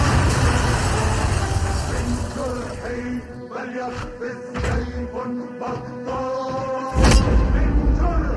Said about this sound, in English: Oh, some slow-mo RPG effects.